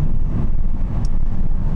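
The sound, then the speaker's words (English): Steady, loud low rumble of wind buffeting from the right-hand side inside a moving hybrid car on a motorway as it drops out of a lane, a continuous roar with road noise underneath and no voices. “A lot of wind noise I seem to be getting from my right hand side here, as I now drop down out of that lane”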